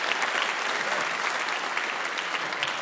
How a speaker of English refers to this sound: Would you give God a round of applause for that? Isn't that awesome?